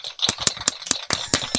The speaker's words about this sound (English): Oh, it's amazing. A whole room full of people and a robot smacking his plastic pieces together.